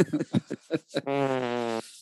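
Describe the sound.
A person imitates a fart with their mouth: a few quick sputtering puffs, then one sustained buzzing raspberry lasting under a second, fairly loud.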